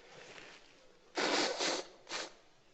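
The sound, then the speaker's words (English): Someone blows their nose in front of everybody at a church talk: a loud, breathy honk in two quick pushes, then a shorter third blast after a brief pause, with no talking over it. “That's a big COVID no-no right there. Blowing your nose in front of everybody.”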